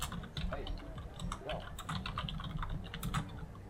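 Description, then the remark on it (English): Rapid, continuous typing on a computer keyboard, with dense irregular key clicks, running steadily over a low background murmur. “We can hear you typing, motherfucker.”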